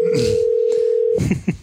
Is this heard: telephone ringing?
yes